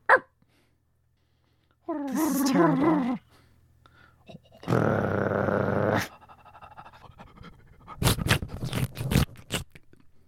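A dog lets out a wavering, throaty growl, followed by a long rough exhale and then a run of quick, breathy pants, with no talking.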